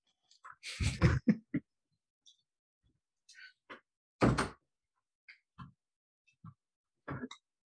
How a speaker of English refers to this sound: 1 second, let me close my door.